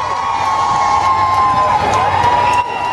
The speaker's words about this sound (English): Prince Harry and fiancée Meghan Markle attracted cheering crowds at their first public appearance of 2018.